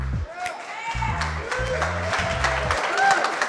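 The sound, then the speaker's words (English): A crowd applauds steadily for the Startup Bus finalists, dense clapping with cheering voices and a thumping bass-heavy music beat underneath throughout. “Let's give a big round of applause for our finalists.”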